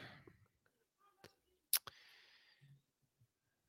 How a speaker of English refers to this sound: Clicking too many buttons. There we go.